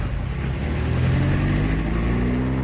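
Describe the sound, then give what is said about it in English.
A steady engine drone with a low rumble that rises slightly in pitch, a car being driven through heavy traffic. It plays alone, with no voices. “this traffic really is appalling. Relax, darling. I don't mind driving.”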